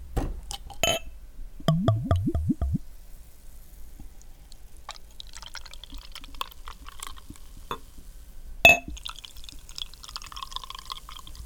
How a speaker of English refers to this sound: We're both going to be tasting both of these beers at the same time. Because we've got the second round. Because we've got another brewery to fit in. So let's crack open the beers.